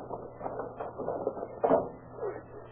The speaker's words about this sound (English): Come on, here's a door we can pry open.